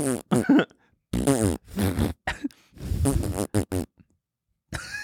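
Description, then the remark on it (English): A voice blurts out a series of buzzy, sputtering mouth noises imitating farts, several short bursts in a row with brief pauses, loud. “The 600 farts, man. It's so genius.”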